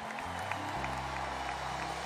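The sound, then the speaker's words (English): A crowd applauds the workforce in a dense, steady wash of clapping for about two seconds, with a low droning hum underneath and no speech. “Now, I want you to give a resounding round of applause to our workforce.”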